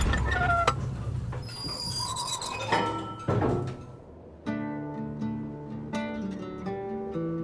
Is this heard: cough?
no